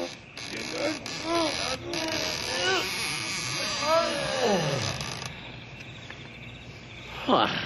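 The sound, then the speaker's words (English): Heavy big doors of the only large building in a ghost town creak open with a run of wavering squeals and groans, ending in a long downward-sliding groan, followed by a quiet pause and one brief squeak. “Now, help me open up these big doors.”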